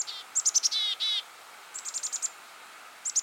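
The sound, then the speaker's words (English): A chickadee's alarm call, warning flockmates of approaching danger: quick high chips followed by harsh, buzzy 'dee' notes, then further bursts of rapid chips, fairly loud against a quiet background with no voices. “They'll make alarm calls to warn their flockmates of any approaching danger.”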